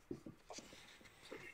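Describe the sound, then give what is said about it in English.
Soft papery rustles and crinkles as thin, floppy sheets of drawing paper are shifted and handled, a few brief scraping bursts with quiet gaps between them. “Later pages were drawn on kind of floppy paper like this.”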